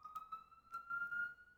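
siren

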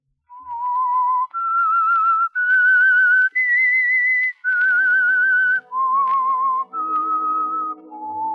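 whistled theme melody

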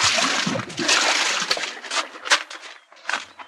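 splashing

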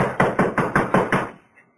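pounding on a door

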